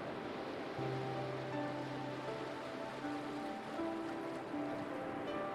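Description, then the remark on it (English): A continuous wash of ocean surf rolling onto the shore, steady, with soft sustained tones humming faintly underneath and no voices. “With each breath, feel a deeper connection to the ocean and its incredible energy.”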